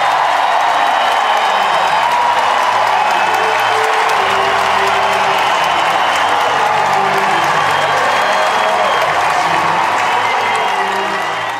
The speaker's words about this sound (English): And when she returns, this is the reaction she gets when she takes the court. A standing ovation.